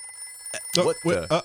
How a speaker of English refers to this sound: The phone is ringing.